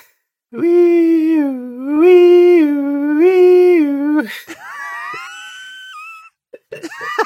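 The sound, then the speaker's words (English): A voice imitates the third of an ambulance's three siren sounds, loudly wailing in a steady two-tone up-and-down pattern for about three cycles, then sliding into a wavering, rising whine before cutting off. “Ambulance sound 3.”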